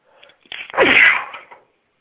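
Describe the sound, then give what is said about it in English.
A single loud sneeze caused by allergies: a few quick, soft inhaling catches build up, then a sharp explosive burst that trails off in a breathy hiss. No one speaks during it. “My allergies, team. My allergies, my allergies.”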